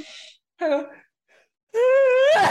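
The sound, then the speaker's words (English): A drawn-out, dramatic sneeze: breathy gasps and a long, wavering voiced 'ahh' that rises in pitch, ending in a brief, sharp burst of noise. “I'm going to sneeze.”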